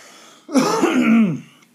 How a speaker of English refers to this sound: Excuse me. Clear my throat here.